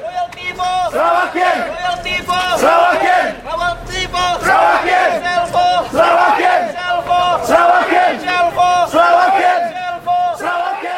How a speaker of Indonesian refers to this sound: Demikian sorakan rakan-rakan kita yang telah mengambil bahagian dalam perhimpunan pagi ini yang berlangsung secara aman, iaitu perhimpunan menuntut hak rakyat Sarawak terhadap dua syarikat gergasi minyak iaitu Petronas dan Shell.